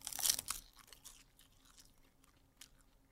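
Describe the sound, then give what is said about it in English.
A single loud, crisp crunch as a snack is bitten, followed by softer crackly chewing sounds that fade out, with one brief sharper crackle near the end. No one speaks. “Take a bite out of this.”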